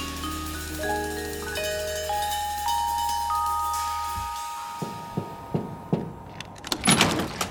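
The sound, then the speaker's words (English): A steady, humming drone cuts off, then a series of sharp, irregular knocks on a door follows, about half a dozen raps growing busier toward the end. “You want to be out there playing with all them hoes and you keep your ass out there, but stop knocking on my goddamn door.”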